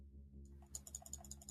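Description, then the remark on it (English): A quick run of sharp mouse clicks, about seven or eight in steady succession, as someone repeatedly clicks trying to unmute another person on a call; fairly crisp over a faint low electrical hum, with no voices. “I'm clicking on it repeatedly.”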